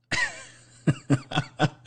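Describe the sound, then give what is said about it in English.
Someone blows their nose: a long, wet, honking rush of air, followed by four short, sharp snorts or coughs in quick succession. “I gotta blow my nose, guys.”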